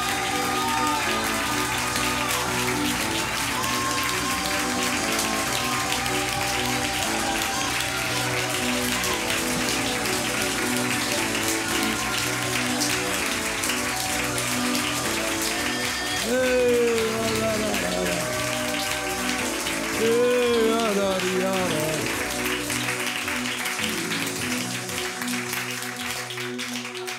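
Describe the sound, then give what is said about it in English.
An audience claps continuously for nearly half a minute, a dense, steady patter of many hands, with sustained musical tones running underneath and swelling briefly in places. “30 seconds, clap your hands and receive it.”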